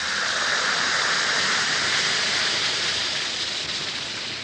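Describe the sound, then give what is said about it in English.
A steady, dense fizzing hiss of Alka-Seltzer tablets bubbling in a glass of water, holding at an even level throughout with no voices. “Yes, it's action in the glass, changing Alka-Seltzer tablets into the liquid form your system can use easily.”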